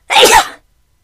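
A single loud sneeze bursts out sharply and ends within about half a second, followed by silence.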